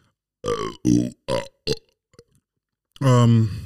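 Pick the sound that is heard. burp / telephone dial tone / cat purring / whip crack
burp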